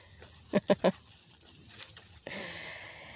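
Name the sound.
cows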